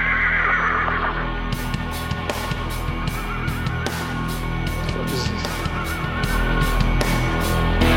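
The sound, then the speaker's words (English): A horse whinnies and neighs loudly, sampled over a steady rhythmic thumping pulse of a musical beat that kicks in after a moment. No one speaks. “Making me sample horses.”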